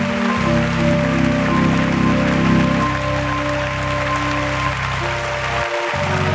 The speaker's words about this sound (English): And I want you to honor them today with a hand clap and let them know how appreciative you are of them.